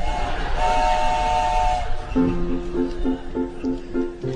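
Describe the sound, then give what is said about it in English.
An Amtrak passenger train bound for Seattle, about 30 minutes from arrival, rolls along with a steady, loud rumble; a sustained horn tone sounds early, followed by a series of short, repeating lower-pitched tones pulsing over the noise. “Thank you for riding Amtrak while you still can.”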